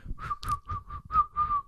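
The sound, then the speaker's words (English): A run of about six short, shrill whistle blasts in quick succession, each a steady high tone, loud, with a low rumble underneath and no talking; a ship's water captain blowing his whistle as the command to come ashore. “And the water captain's got his whistle. Yeah. And that he's about to blow the command yeah. to come ashore.”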